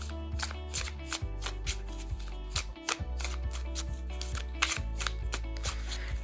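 Repeated quick, crisp bursts of a deck of oracle cards being shuffled three times before a card is pulled, layered over steady instrumental music with a prominent bass line; no one speaks.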